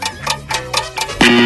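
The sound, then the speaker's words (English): A game show countdown clock ticks in a steady, evenly spaced rhythm, each tick bright, before a sustained tone sounds at the end. No one speaks. “The clock was all over.”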